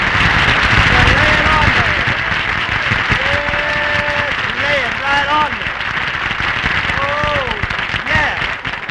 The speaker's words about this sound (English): Phil, why do you always have to come in here and ask the audience to applaud? Well, I ain't going to get no laughs with the jokes you give me, and I want to hear some kind of noise.